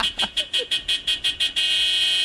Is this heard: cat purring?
no